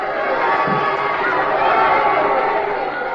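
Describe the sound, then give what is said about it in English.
A dense, steady roar of a large crowd at a boxing match as a boxer staggers back from a savage right to the chin, many voices shouting and cheering together at a constant loud level with no pauses. “The crowd grows wild.”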